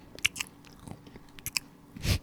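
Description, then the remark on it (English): Crunching of Westminster Bakers Co. oyster crackers being chewed, a series of sharp irregular crunches with a louder bite near the end, no talking. “Gotta chew louder.”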